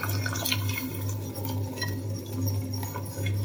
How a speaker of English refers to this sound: And then you need to whisk the stock while you pour it in. I cannot find my whisk, so I'm using a fork.